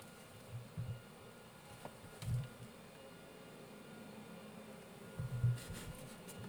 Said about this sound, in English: Are my neighbors seriously vacuuming out their car? Okay, well, thank you, neighbors, for interrupting me.